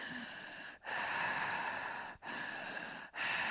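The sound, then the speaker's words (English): A voice imitates heavy, muffled breathing: long, loud, rasping breaths, broken by three brief pauses, with no talking. “So now we cut to some muffled breathing.”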